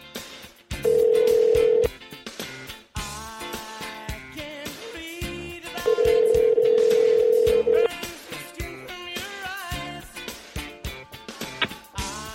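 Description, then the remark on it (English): A phone call rings out: two long, steady ringback tones about five seconds apart, loud, sounding over a busy musical background. “Come on, phone. Here we go.”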